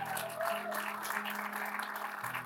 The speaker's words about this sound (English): Give them a hand clap. Isn't that wonderful?